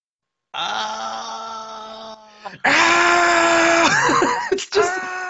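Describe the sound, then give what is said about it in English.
The Pokémon Guzzlord's cry, like a man screaming in agony: a loud, harmonically rich wail held for over a second, a brief pause, then a second louder, longer scream that wavers and breaks near the end. “It's just the sound of somebody screaming in agony,”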